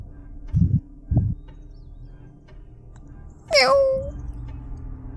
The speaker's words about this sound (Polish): Jak sobie miałczy. No dajcie spokój, no to tylko mały kot, no.